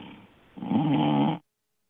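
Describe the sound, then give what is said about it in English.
A caller from Chicago on CBS Sports Radio gives a single loud, rasping snore through a thin, telephone-quality line, preceded by a quieter breathy inhale and then cutting off abruptly into silence. “are you snoring?”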